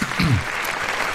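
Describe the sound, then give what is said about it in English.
A short burst of audience applause: dense, steady clapping from many hands, with a brief vocal murmur near the start. “It's like question time. Clap.”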